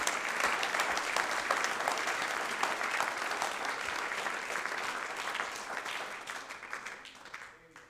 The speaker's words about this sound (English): Clap your hands unto the Lord, all you people.